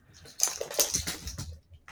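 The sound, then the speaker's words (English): Jack, a dog, laps up water in a quick run of wet, slurping splashes, fairly soft and uneven in rhythm, with no one talking over it. “If he ever stops drinking water, it'll be a good day.”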